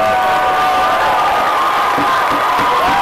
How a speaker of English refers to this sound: And I am going to ask that people refrain from applause and extended outbursts so we can move efficiently through the meeting and so people can hear their names called as well.